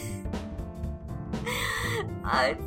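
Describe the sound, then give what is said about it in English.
A voice imitates a character's bad coughing fit while stumbling around the side of a room: several rough, strained hacks and gasps in quick succession, ending in a louder, groaning heave, fairly loud. “Nanny is currently kind of like stumbling around the side of the room, coughing badly, and has like some grayish gunk all over her face.”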